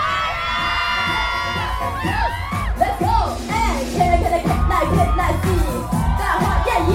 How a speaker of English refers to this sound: Let me hear you scream!